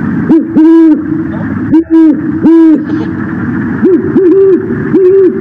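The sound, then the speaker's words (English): An adult great horned owl hoots in a deep, resonant series of about six calls, a slower group of three followed by a quicker trio, clear over a steady background hiss. “And the great horned owl is one of those.”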